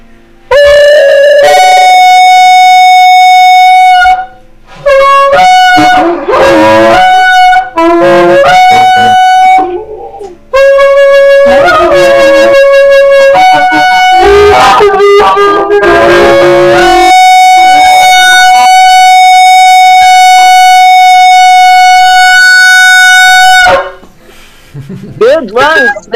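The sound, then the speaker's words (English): Loud, brassy shofar blasts run through the four traditional calls: a sustained note, broken short calls, a flurry of rapid staccato bursts, then one very long held blast ending the sequence. “Anybody wants to blow shofars, blow them with me.”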